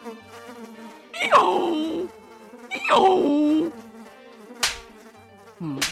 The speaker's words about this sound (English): Sorry, I had to scare away some flies that were buzzing around my butt.